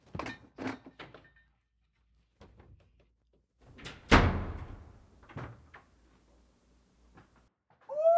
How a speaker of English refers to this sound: Hey! Gotta shut the door.